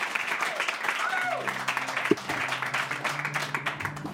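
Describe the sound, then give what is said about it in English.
A small studio crowd in the Blue Moon Listener Lounge of Idaho radio station 94.9 The River claps steadily and warmly in the morning to welcome a band, a dense, even patter of hands, with a few voices calling out and murmuring underneath. “I've got a lovely crowd here with me this morning to give a warm welcome”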